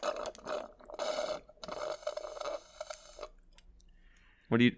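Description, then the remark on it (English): A glass of water being handled as a bit of Foley work: a run of scraping, squeaky rubbing sounds in uneven bursts, fading to a faint hiss, then one sharp, louder knock at the end. “It's a glass of water. It's a little Foley work for you there.”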